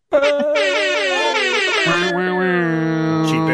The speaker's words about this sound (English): Welcome. With the air horn. Production value.